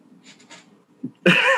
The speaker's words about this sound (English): I'm coughing. Sorry, I had to cough.